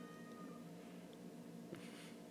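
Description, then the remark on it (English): A faint cat meows once from outside, its drawn-out cry trailing off over a steady low background hum, with no one speaking. “A fucking cat. Should I let him in?”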